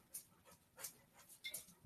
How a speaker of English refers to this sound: So one of the things I'm grateful for is having to deal with the dog. She wants to go out, but I don't want her to bark, so she's pawing at the sliding glass door.